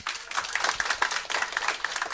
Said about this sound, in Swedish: Applåd!